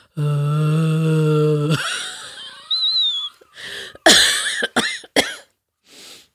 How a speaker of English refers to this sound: I think I peed a little when I coughed.